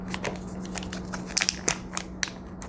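The crinkly plastic wrapper of an eye mask is handled and peeled open, with a run of irregular crackles and a few sharper crisp snaps over a faint steady hum, no talking.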